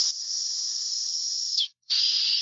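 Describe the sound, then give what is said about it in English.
A person imitates a snake with two sustained, sharp hisses from the mouth, a long one followed after a brief pause by a second, fairly loud with no talking. “I just thought I'd make a snake impression, but you know, that is how we roll.”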